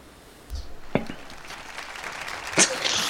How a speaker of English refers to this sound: A lot of applause. This feels really good. Thanks, guys. Crowd is hype tonight. Yeah, man. It's a seated crowd, but there's been a couple standing O's.